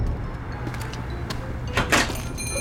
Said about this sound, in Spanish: acaba de entrar por la puerta de la tienda